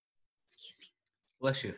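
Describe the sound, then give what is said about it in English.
A single loud sneeze: a short breathy intake followed by a sharp, explosive burst, with silence around it and no talking. “Excuse me. Bless you. Bless you.”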